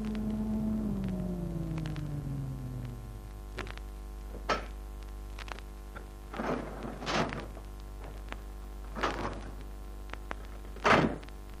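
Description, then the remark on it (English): A low mechanical hum descends in pitch, then settles, followed by a series of soft thuds and clunks and a brief sliding rumble, like an elevator in the Biltmore Arms building reaching the top floor and its doors opening, at moderate volume. “20 minutes later, I entered the Biltmore Arms building, took the elevator to the top floor.”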